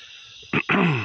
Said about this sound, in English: Clearing my throat.